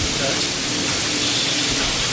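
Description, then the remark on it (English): Steam rushes through a vinyl record press as it opens, heating the die to about 280 degrees, in a loud, steady hiss that holds evenly for about two seconds, a broad airy roar with no breaks or rhythm. “When this opens, the steam's going through and heating up that dye.”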